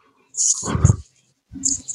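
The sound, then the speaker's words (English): A drawn-out human yawn, a breathy rush sliding into a low, groaning vocal stretch, followed after a short pause by another brief breathy vocal sound. “Sorry. Yeah. I've been yawning all day myself.”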